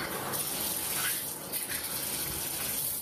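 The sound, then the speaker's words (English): A shower runs steadily in a hotel room bathroom, a continuous hiss of spraying water that stays even and fairly loud before cutting off abruptly at the end, with no voices. “She had turned on the shower while the date was asleep, say police.”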